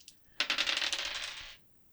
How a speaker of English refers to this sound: Well, I need to roll two dice, please.